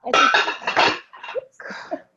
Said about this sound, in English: Oh my goodness! No, the flower vase fell over that was propping up the tablet.